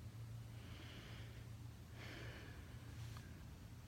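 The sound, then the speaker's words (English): Slow, deep breaths drawn in and let out during a guided breathing exercise at the start of worship, three airy whooshes spaced about a second apart, quiet over a steady low hum, with no talking. “So join me in breathing, and we want to breathe deeply.”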